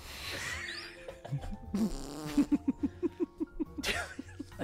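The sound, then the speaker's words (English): A long, comic fart sound effect sputters through a rapid series of evenly spaced pulses, loud, ending with a final brassy blurt and no voices. “I think we got in trouble once for putting a fart in a HelloFresh.”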